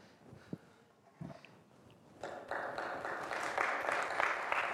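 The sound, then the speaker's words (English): A church audience breaks into applause, starting from a few scattered claps and swelling into a steady, broad wash of clapping that holds at moderate loudness to the end. “Y'all don't clap in this church, do you? That's worthy of an applause.”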